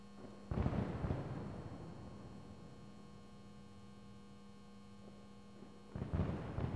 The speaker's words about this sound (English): The night grew stale. Perfunctory fireworks sizzled in the sky, but everyone else went home.